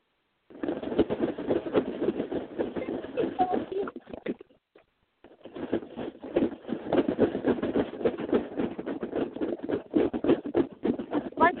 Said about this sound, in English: A box rattling around.